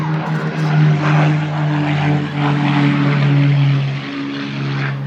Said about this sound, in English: And there's a Spitfire going off.